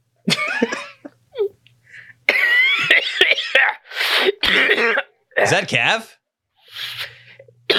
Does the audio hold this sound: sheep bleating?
no